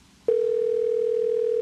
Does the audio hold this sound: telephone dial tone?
yes